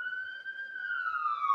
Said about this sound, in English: Those are sirens on our end. No, they're coming for you.